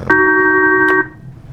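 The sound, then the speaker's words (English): A steady electronic phone tone from a phone call sounds once, loud, for about a second between two sharp clicks, then cuts off into quiet room noise. No one speaks. “Interrupted briefly by a phone call, but, you know, you're a busy guy.”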